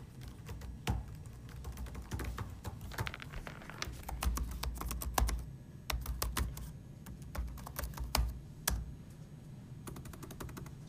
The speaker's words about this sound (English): Keyboard typing.